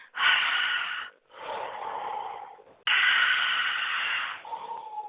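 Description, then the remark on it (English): Slow, deep breaths drawn in and pushed out, a few long airy rushes, each a second or more, fairly loud, with no talking. “An inhalation should be 2 or 3 seconds, whereas an exhalation should be 4 or 5.”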